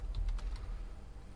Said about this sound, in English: You're just too fast for your keyboard to know what's going on.